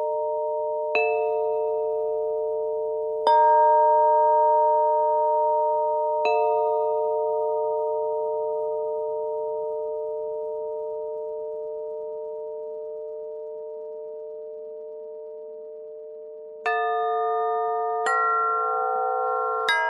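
Gentle chimes ring out alone, struck about six times with long, shimmering tones that hang and slowly fade, leaving a sustained hum between strikes.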